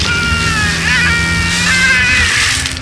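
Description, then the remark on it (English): A pet cat named Petty yowls in a yard in one long, loud, wavering high-pitched wail that rises and dips for about three seconds over the steady low rumble of a truck engine that has just been started. “Petty's final yowl filled the yard like a siren.”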